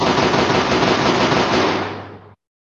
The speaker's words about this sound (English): That sounds like a buckshot. Yeah, that's a buckshot. That's not like a, or like a really heavy pistol. I'm not sure which one. That's loud, man.